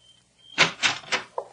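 A door is opened, with three quick scraping clunks in a row and a short knock as it settles, no voices.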